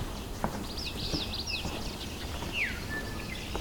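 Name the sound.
great crested flycatcher call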